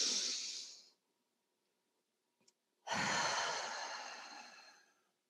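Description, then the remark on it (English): A person's airy breath drawn in briefly, a pause of near silence with a faint click, then a long, steady exhale that slowly fades out, done as a deep breathing exercise: in for five counts, hold for three, out for seven. “In, you know, and just take in those deep breaths.”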